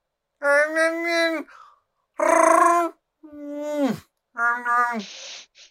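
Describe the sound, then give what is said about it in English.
Someone voices a creature's roaring scream in four loud, drawn-out bursts, with strained, groaning tones and a falling wail, separated by short pauses, without any words. “Yeah, actually, even his scream when they trapped him in the Sarlacc pit, it was more just like a roar”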